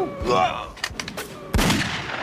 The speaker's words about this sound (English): there's a sudden burst of enemy gunfire and a bullet hits Lee in the shoulder